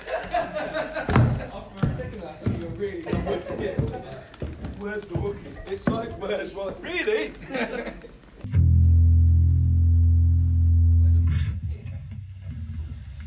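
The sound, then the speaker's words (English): A producer's quick, heavy footsteps thud and clatter up steep stairs in a building in an uneven scramble, then stop abruptly as a loud, steady low hum takes over. “Oh, there comes one of the producers running up the stairs.”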